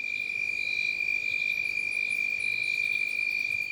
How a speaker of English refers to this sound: And crickets lulling us to sleep at night.